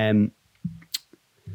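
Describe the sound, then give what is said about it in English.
A pair of keys being fiddled with: a few irregular small clicks and one sharp, bright tap, with short voiced murmurs at the start and end. “Using a pair of Nat keys to keep it up. Sorry about that. I'll stop fiddling with that shit.”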